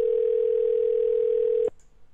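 A steady electronic phone ringing tone hums loud and unbroken for under two seconds, then cuts off abruptly, leaving a faint click and quiet line noise. No one speaks.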